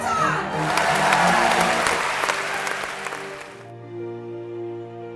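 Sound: audience roaring and cheering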